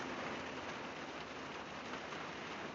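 Steady rain falls continuously, a dense, even hiss of drops with no pauses or voices, moderately loud, spread across the whole stretch.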